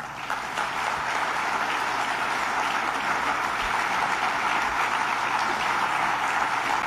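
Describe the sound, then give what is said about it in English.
A room full of lawyers applauds steadily, a dense wash of many hands clapping at an even loudness throughout, with no voices standing out. “Yes, that is a room full of supposedly conservative lawyers applauding that point.”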